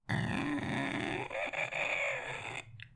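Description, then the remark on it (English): A voice imitates a very old door creaking as it is opened: one long, strained, raspy groan held for nearly three seconds, wavering in pitch with gritty texture, no words spoken. “It's the sound a door makes if it's very old and you open it.”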